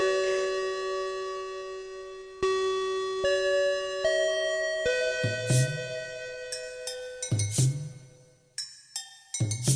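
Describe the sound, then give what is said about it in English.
A bright, sustained chime rings out in a short stepping melody, its tones layering and ringing on, followed by a few sharper percussive hits near the end. No one speaks. “Ding dong.”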